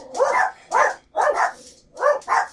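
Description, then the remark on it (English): Five sharp dog barks in quick succession, loud, with short uneven gaps between them and no talking. “the dogs are like, get off, be done.”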